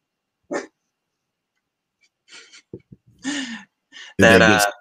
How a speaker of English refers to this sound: Southern alarm system. Just a bunch of barking dogs.